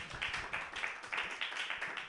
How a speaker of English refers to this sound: Stop clapping, I don't have all day.